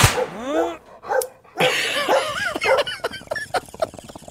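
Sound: dog barking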